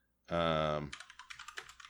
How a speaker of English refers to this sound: Hold on. I'm using my loud keyboard.